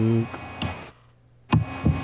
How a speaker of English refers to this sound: We got that crazy hissing back. What is that?